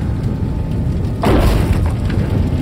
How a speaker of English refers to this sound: And I mean it. As the roof comes crashing down on us both, I really do mean it.